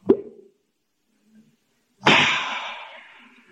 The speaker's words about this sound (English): I brought some with me in my satchel. I think I'll open a bottle and take a slug now.